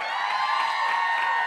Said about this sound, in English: Do you want help from the audience? Sure. By a round of applause, who thinks it's bowling?